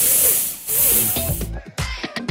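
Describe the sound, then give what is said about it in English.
A loud, steady hissing noise, like air spraying out, given as the hiss heard coming from a 72-year-old man's genitals, briefly dips then resumes before cutting off about halfway through, with voices and muffled talk continuing after it stops. “The man heard a hissing noise coming from his genitals.”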